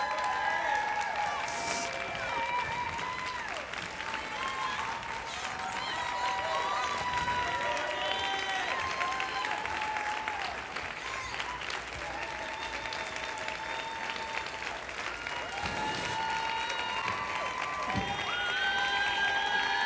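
Sustained audience applause, a dense, steady clatter of many hands that holds at an even loudness for the full twenty seconds, with scattered voices and high whoops rising above it.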